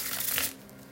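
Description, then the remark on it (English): A brief burst of papery, crinkly shuffling of a tarot card deck for about half a second, then fades into a low steady hum with no voices. “Let me give the tarot card the tarot deck just a few more shuffles.”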